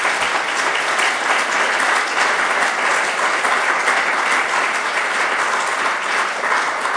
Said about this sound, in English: Thank you for your involvement, and could we please give the panel a round of applause?